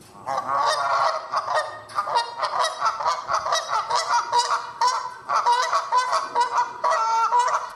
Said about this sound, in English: Geese don't care about what they leave on the path or whether they're in our way, or that they can really be noisy.